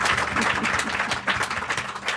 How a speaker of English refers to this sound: Please join me in giving them a very big round of applause for being so generous and spending your time with us.